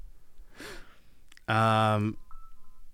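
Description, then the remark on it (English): A phone notification sounds once: a loud, buzzy electronic tone lasting about half a second. A soft breath comes just before it, and a faint blip follows. “Is it telling you that it's time to read it? Is that what you were doing? Yeah, my phone's like, read it.”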